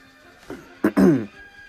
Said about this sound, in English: Excuse me for the cough. We still have yet to develop a cough button at the Anchor.fm studio.